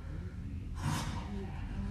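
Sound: voice imitating loud snoring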